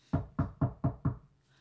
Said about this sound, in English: Five. Five knocks.